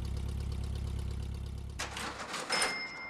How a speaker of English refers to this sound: Get into the driver's seat and keep the car running so we can make a quick getaway if necessary.